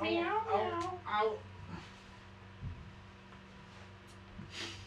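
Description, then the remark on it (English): A cat lets out a drawn-out, wavering meow, then a short second one, followed by a steady low hum and a few soft thumps. “We snagged the cat.”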